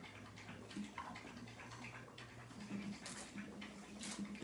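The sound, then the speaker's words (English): A dog laps water in quick, wet, repeated splashes, a steady rhythm of soft slurps set a little back from the listener over a low background hum. “You can hear him drinking water.”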